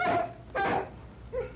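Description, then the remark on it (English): Wolves let out a short run of canine calls: a whining yelp, a sharp bark, then a softer, higher whimper, spaced across a second and a half with no talking. “Come on, wolves! I'll fight you with my bare hands if I have to!”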